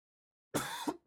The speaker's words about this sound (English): Sorry, the cough from last week has fucked up my week.